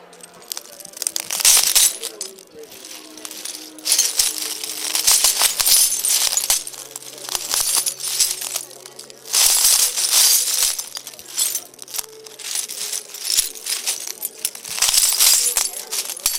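Broken glass pieces clink and crunch in repeated bright, crackling bursts, fairly loud, continuing throughout with brief pauses between louder surges.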